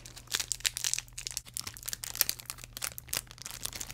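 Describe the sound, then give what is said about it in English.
A plastic Chocorramo snack-cake wrapper crinkles and crackles in irregular bursts of sharp, bright rustling for several seconds, with a faint low hum underneath and no one speaking. “He'll chew right through the wrapper.”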